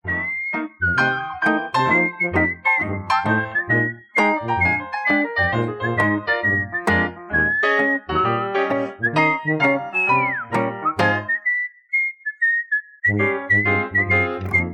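A bright, melodic whistled tune plays over a bouncy instrumental backing, the whistle carrying a steady sustained melody line with a brief slide near the end before the music resumes.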